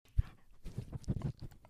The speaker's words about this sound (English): And she's licking the mic. All right, hey, can you lie down? She's kissing all your fans out there. Oh, she's giving some lovely doggy kisses.